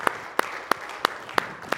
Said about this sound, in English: Let's give Him a hand clap of worship together, please.